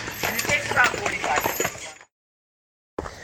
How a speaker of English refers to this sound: We have a lot of horse-drawn carriage rides.